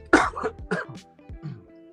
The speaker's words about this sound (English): Hold on, I got a cough.